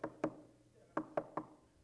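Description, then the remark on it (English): Knocking on a door: two quick raps, a short pause, then three more in an even rhythm. The knocks are sharp, with no voices around them. “I go to their house and do this.”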